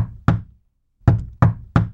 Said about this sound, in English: The knock for hospitality is 2 knocks, 3 knocks, and then 1.